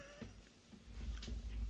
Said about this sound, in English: Oh, the cats are fighting. Cats are fighting. You can probably hear the cats fighting. The baby Patty, who's 7 months, is getting horny. She's getting horny for her brother.